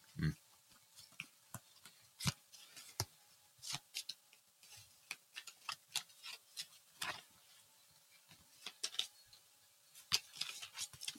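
A deck of playing cards being shuffled during a card game because the draw pile is empty: a quiet, irregular run of crisp snaps and papery riffles lasting several seconds, with no talking.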